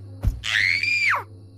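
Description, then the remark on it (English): A child's single shrill scream of terror at a monster's hand grabbing from under the bed, held high and steady for about a second before dropping away, loud, following a short low thump. “As I screamed, the monster's hand grabbed my leg and began to pull me under the bed.”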